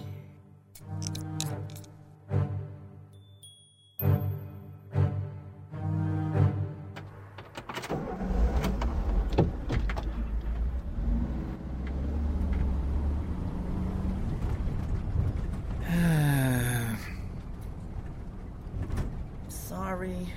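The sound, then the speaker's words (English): A car turns in and rolls into a driveway, its engine a steady low rumble with tires crunching, ending in a brief high squeal as it comes to a stop; tonal sounds precede its arrival. “My car just turned in.”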